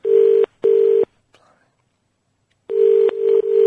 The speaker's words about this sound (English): I'll ring someone up. That's not working. Let's try that. Oh, it's ringing now, I put two through.